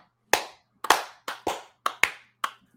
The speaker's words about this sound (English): Can we have some baby face claps for these hardworking gentlemen?